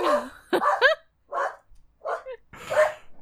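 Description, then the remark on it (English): A dog barks at someone at the door in a string of sharp, irregular bursts, some higher and yelpy, with brief pauses between them before a final louder bark. “Oh, dogs are precious.”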